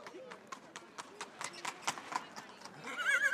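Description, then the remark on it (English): Horses clip-clopping on a hard street at the annual horse fair in Carrimee, where horses are traded on the side of the street, a steady run of sharp hoof strikes, with a whinny rising near the end and crowd voices murmuring underneath. “We're here at the annual Carrimee Horse Fair, where horses are traded on the side of the street, which has been happening for hundreds of years.”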